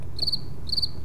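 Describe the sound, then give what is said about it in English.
Two short cricket chirps, each a quick trill of about three high pulses, separated by a brief pause over a faint low background hum. No one speaks. “Crickets.”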